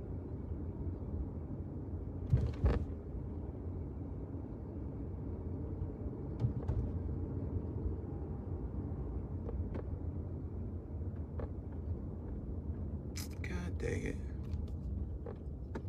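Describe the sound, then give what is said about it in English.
A car's steady low engine and road rumble from inside the vehicle as it moves slowly while parking, with a couple of brief knocks and rattles along the way. “I'm about to park soon, man.”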